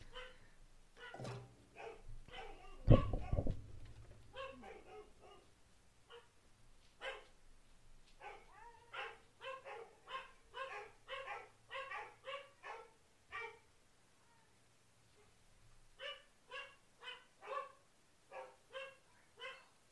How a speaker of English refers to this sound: I'm going to pause you a minute because the dogs are going nuts because, of course, the doorbell rang.